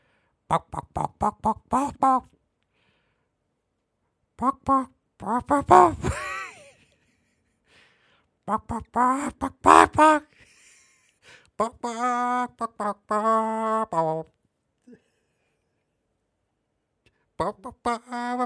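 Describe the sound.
A person imitates a chicken, rattling off quick strings of short clucks broken by longer, drawn-out squawks in several loud bursts with pauses between them.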